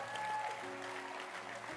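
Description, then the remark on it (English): A crowd claps steadily and densely for a couple of seconds, applauding a pastor's work with the Dancing Stars dance group at a church gathering, with sustained musical tones ringing faintly underneath. “Clap your hands for Lady Pastor Jasmine for the great work she has done with the Dancing Stars.”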